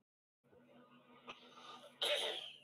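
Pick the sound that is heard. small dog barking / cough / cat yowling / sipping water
cough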